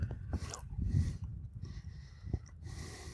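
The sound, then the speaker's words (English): Chewing of a crunchy Andes Cherry Jubilee chocolate mint thin, with a few sharp crunches and soft mouth noises over heavy nasal breathing. “It's got a little crunchy in it. Well, yeah. It's an Andes mint, so it's got a little snap to it.”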